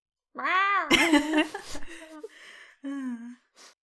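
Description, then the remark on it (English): A person imitates an excited cat, voicing a drawn-out yowl, rising and wavering, followed by a burst of breathy, strained squealing and a couple of shorter whining meows, fairly loud. “Give me your best wow cat. Noise.”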